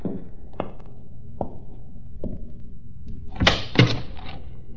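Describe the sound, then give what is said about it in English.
A door is handled: several soft knocks or thumps spaced apart, then a louder rattling clunk as it swings and latches shut, with no voices. “Please close the door and come in.”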